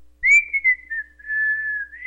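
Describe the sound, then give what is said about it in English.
A person whistles a single sustained, wavering tone that dips slightly and holds steady for about two seconds, clear with no talking. “I don't know if you've ever talked to anybody on the phone who does this, but he was whistling in between everything he said.”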